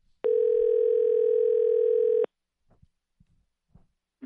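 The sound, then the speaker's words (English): A steady telephone dial tone hums loudly for about two seconds as a call is placed to the speaker's father, then cuts off abruptly, followed by a few faint clicks and soft handling noises. “Let's call my dad.”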